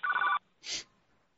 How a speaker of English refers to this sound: Their phone's already ringing.